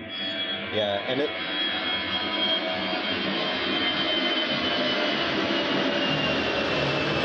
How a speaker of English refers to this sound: At this moment, planes keep flying lower and lower.